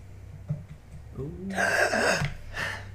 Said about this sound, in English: And as you sit up and gasp for air, as you're like, where am I?